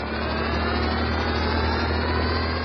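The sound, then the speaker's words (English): The jet-prop engines under each small wing of the flying Fantastic Car drone steadily, a constant low hum with layered tones under a broad, even rushing roar that never changes pitch or loudness, with no voices. “Those jet props under each small wing certainly keep the ship flying smooth.”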